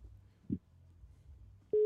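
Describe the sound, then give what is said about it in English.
A faint click on an open phone line during a live call-in show, then a loud, steady electronic tone cuts in abruptly at the end, the flat hum of a busy or disconnected line after the caller hangs up. “They hung up.”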